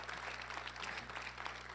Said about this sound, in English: Come on, give that applause to God if you're going to give it strong.